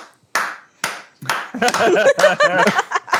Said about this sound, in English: Learn to clap. It's dead simple. You just do this. That's it. That's clapping. You don't need to do anything more. Actually, you do this.